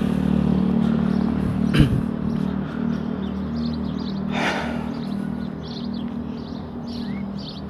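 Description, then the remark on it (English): A car engine rumbles steadily as the car rolls past, driving around a person walking in the middle of a road lined with parked cars and no sidewalk, with a brief clunk and a swelling whoosh midway, while birds chirp faintly in the background. “I'm walking in the middle of the road because there's like cars parked on the side of the road and there's really no sidewalk, so I'm like kind of walking in the middle of the road and the car's like going all the way around me.”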